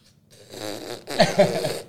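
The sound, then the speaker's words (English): A voice imitates a fart with a buzzy, sputtering raspberry lasting over a second, growing louder and rougher toward the end, clear with no talking. “They're asleep. So they're the ones farting.”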